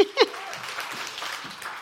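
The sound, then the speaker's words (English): An audience applauds the Lord, a dense wash of many hands clapping at once, opening with a couple of sharper bursts before settling into an even, sustained patter. “Yeah, you can applaud the Lord.”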